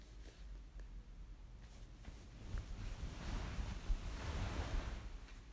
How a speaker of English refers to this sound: Can you hear the waves now the big men have gone?